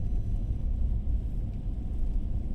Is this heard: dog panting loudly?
no